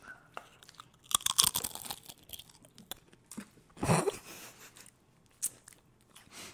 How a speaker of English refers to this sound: I was watching you focus so hard on making that crunch.